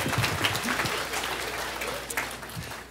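A round of applause from a crowd, steady dense clapping that stays fairly loud throughout and tapers slightly toward the end, with no speech over it.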